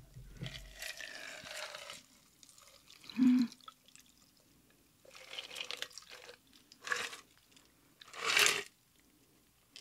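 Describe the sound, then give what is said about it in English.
A pink cocktail being strained over a lot of ice: intermittent splashy pours and drips with a few crisp clinks and crunches of ice, in uneven bursts of moderate loudness and no talking. “We're gonna strain this puppy.”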